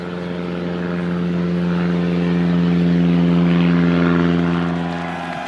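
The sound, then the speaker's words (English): A propeller airplane drones steadily overhead at an air show, its loud engine hum swelling toward the middle and easing off slightly at the end, with no voices. “When he was little, his father took him to an air show where airplanes flew and raced across the sky.”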